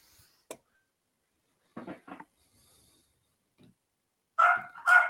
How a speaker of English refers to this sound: Your fucking dog never shuts up